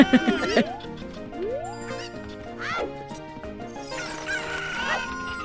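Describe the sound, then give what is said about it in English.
Cartoonish video game chickens (cuckoos) cluck and squawk in quick bursts while the game is played, with rising and falling electronic tones and a steady tonal hum underneath, moderately loud. “Okay, I was looking at the comment and did not pay attention to any of these cuckoos, so we are going to lose this game.”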